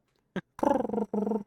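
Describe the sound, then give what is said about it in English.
A voice imitates a pet dove that sounds like a pigeon: a short tap, then two low, throaty, warbling coos, the first longer than the second, with no other talking. “You all have a pet dove that sounds like a pigeon.”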